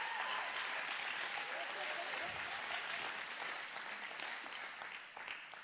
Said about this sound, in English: yeah, give him a clap. Give him a clap.